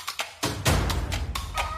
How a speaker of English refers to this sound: Put that rooster down!